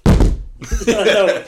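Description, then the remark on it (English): A phone is set down hard on a table with a loud, dull thunk, a softer knock follows a moment later, and then someone starts talking. “Like in all of the episodes up to this, there's just like all the time, and when I put my phone down, it's just.”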